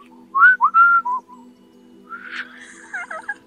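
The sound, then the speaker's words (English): A loud, close whistle of several short, bright sliding notes, followed by a softer warbling whistle with quick wavering trills, over a faint steady hum. “Why is it when you whistle, it sounds so loud?”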